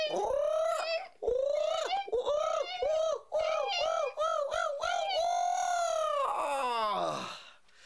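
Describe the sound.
A human voice imitating a hawk's cry: a rapid run of loud, rising-and-falling screeches, then a longer held cry that breaks into a rough, fading squawk.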